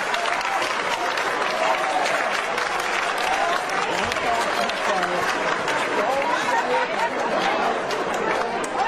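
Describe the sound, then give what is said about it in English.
Sustained audience applause fills the whole stretch, a dense, steady wash of clapping at even loudness, with cheers and crowd chatter mixed in. “I guess it's useless not to say stop the applause.”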